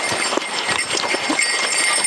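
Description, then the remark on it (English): Bear bells jingle steadily in a quick, uneven rhythm, their bright, high metallic tinkling fairly loud and continuous, with soft shuffling thumps underneath and no voices. “Hear my bells.”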